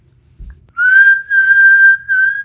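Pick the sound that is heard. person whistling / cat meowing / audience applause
person whistling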